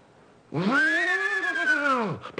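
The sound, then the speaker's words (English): A man's voice imitates a horse whinny, the horse from the Buck Benny Rides Again westerns: one long, loud, strained cry that rises quickly, holds with a slight waver, then sinks away, heard alone after a moment of quiet. “So he would do the horses. So first do just the horse, the Winnie.”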